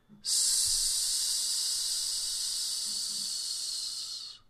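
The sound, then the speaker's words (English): A single long, steady hiss of breath pushed out through the teeth after a deep breath, as a breath-control exercise, bright and airy, holding evenly for about four seconds before tapering off, with no talking. “And now breathe deep. And release on a hiss.”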